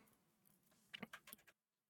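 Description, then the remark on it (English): A short burst of computer keyboard typing: five or six quick, crisp key clicks in an irregular rhythm, quiet, over a low background hum, then silence. “You looked like you was typing something then, so I thought I was just going to throw something at you and put you off.”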